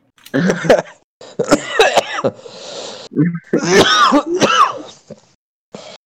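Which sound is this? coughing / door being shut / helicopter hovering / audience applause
coughing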